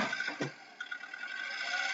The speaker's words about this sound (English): But she's literally revving the gas pedal. And she took off her shoe and now she's revving it some more.